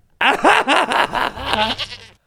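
A goat bleats loudly in a run of quavering, wavering cries lasting about two seconds, the pitch wobbling up and down before fading out.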